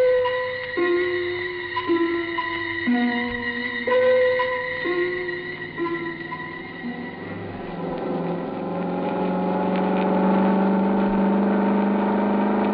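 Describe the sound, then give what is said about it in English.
The engine of a suntan and chrome Cosmoroma car hums steadily and changes pitch in a series of steps, then revs up with a rising, smooth whine as it accelerates, growing gradually louder. No voices are heard. “It purred like a kitten, performed beautifully.”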